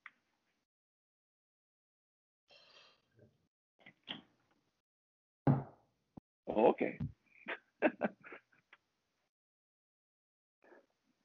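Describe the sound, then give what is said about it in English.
A dog scratches and paws at a door in a run of irregular scraping bursts and soft thumps, with a brief spoken word and some quiet gaps between the bouts. “My dog's scratching at a door here and he's just going to continue to do that.”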